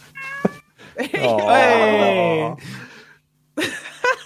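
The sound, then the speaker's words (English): A cat lets out a long, loud, drawn-out meow with a wavering pitch, preceded by a short chirp and followed by a few softer sounds and a brief pause. “This is the cat, by the way.”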